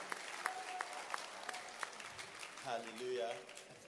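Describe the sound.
An audience claps their hands in a dense, steady burst of applause, with a voice rising briefly over the clapping toward the end.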